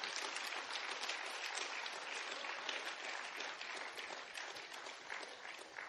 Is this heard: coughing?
no